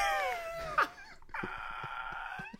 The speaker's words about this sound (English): Dog's barking. Dog. Yeah, hey, yeah. You can bark at him, too, if you want.